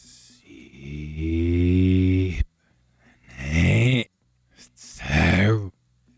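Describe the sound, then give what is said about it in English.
A voice sings three drawn-out, breathy phrases played in reverse, each swelling up from airy noise and then cutting off abruptly, with short quiet gaps between them. “I need to hear the breathing. I need you to hold the notes.”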